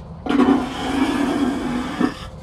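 A toilet flushes in one steady rushing surge of water lasting about two seconds, with a low hum running underneath, then it cuts off abruptly. No one speaks.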